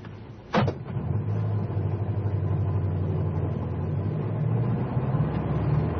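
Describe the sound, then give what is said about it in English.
A taxi's engine rumbles steadily after a brief sharp click, its low drone holding as the taxi pulls away and drives on to follow another car, with no one speaking. “Hey, taxi! Follow that car.”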